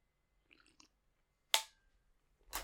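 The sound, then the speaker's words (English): A few soft clicks, then a short, breathy slurp of someone sipping coffee, followed by another brief sip a moment later. No talking. “We're gonna have to sip another sip of my coffee.”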